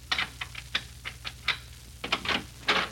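A key scrapes and clicks into the door lock of an apartment in a Chicago apartment hotel overlooking Lake Michigan, a series of sharp metallic taps and rattles in an uneven rhythm, fairly quiet, with no voices.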